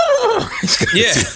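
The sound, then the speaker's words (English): A person vocally imitates the whinny of a half-horse video game character, a wavering, high-pitched neigh that rises and falls for about a second and a half, fairly loud. “He whinnies, you know he's half horse.”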